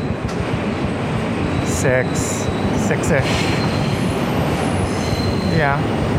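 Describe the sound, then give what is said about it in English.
A subway train rumbles steadily through a tunnel, its loud, continuous roar broken by several short, high metallic wheel squeals as it slows down. “So we are now going back into the tunnel. Train is slowing down a little bit.”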